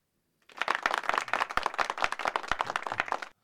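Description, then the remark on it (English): A burst of applause from a small group, dense overlapping claps lasting about three seconds at steady moderate loudness, then stopping abruptly. No one speaks. “But I've got some winners here. Yeah, some claps for the week.”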